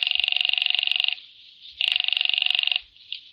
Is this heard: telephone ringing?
yes